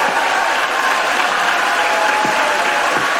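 A large crowd in the Senate chamber breaks into loud, sustained applause and cheering as a nomination is confirmed 53 to 47, dense steady clapping throughout with no pause and no one speaking over it; Mitt Romney is on his feet cheering.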